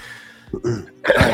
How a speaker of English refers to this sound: No, it's this cough. It's bothering me. I haven't been able to do anything all day.